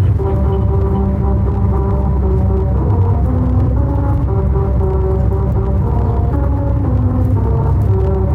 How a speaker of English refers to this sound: It sounds like a swarm of bees. It does essentially sound like a swarm of bees.